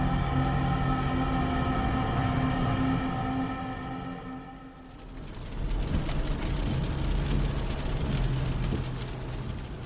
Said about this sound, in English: The car sped down the dark highway, not too fast, but fast enough.